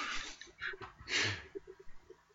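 Someone fakes a coughing fit: several rough, breathy bursts, the strongest and longest in the middle, trailing off into faint short huffs.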